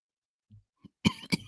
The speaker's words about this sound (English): I have a bit of a cold, guys. So if I cough, please bear with me.